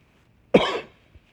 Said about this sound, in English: It's hard to figure out how to cover up one of these mics to cough. You can take one away, but it's hard to figure out how to cover it up.